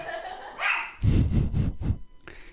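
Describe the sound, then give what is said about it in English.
A female dog barks in a quick series of short, excited yips and woofs, sounding playful as she wants to play, with a higher whiny note at the start and another brief bark at the end. “She wants to play. I don't know if you can tell”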